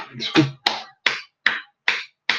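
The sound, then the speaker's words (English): A single person gives himself a round of applause, clapping hands several times at a steady, slightly quickening pace, each clap sharp. A brief bit of voice sounds at the start before the claps continue alone. “Giving myself a round of applause because I'm excited, man.”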